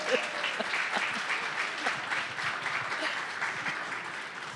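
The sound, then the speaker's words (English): An audience claps steadily, a dense patter of many hands at moderate volume that holds evenly throughout without rising or fading. “And I hope that you all will applause after this.”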